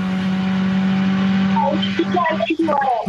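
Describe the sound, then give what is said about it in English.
A car engine is revved to its redline while being driven, holding a loud, high, steady whine, with voices talking over it toward the end. “Redlining his car.”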